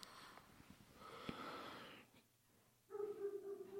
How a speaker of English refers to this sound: Okay, that's enough of the barking